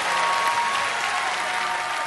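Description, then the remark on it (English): An audience claps together as a clap offering to the Lord, in sustained, dense applause, loud and steady throughout with no voices rising above it. “But come on, give the Lord a clap offering.”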